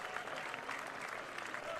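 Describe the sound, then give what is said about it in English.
A large crowd in a ballpark applauds steadily, a dense, even wash of clapping and cheering at constant loudness that holds for the whole two seconds. “But still, big crowd in the ballpark here.”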